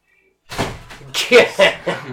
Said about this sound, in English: Here, open the door. No, you're good. Come on in. Open it up.